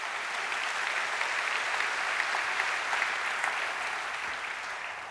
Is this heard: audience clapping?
yes